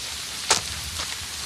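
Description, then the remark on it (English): A steady hiss of rain falls throughout on an evening in Scotland, with a sharp splash-like crack near the middle and a fainter one shortly after. No voices are heard. “Oh, it's good Scottish weather, madam.”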